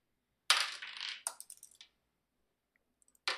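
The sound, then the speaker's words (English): Dice clatter and tumble across a hard surface in a quick burst of rattling clicks, settling with a few scattered taps, then another short clatter starts near the end. Fairly loud. “Let's give you a different dice.”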